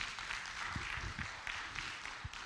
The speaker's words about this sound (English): And today we are, yeah, you can put your hands together if you want to clap today.